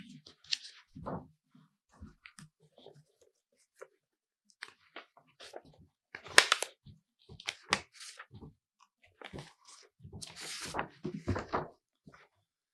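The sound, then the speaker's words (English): Paper rustles and crinkles in irregular bursts of crisp, scratchy handling noise as a speaker gets the paper ready to read from the Tikkunei HaZohar, with brief quiet gaps between movements and a busier flurry toward the end. “Sorry, the paper is here.”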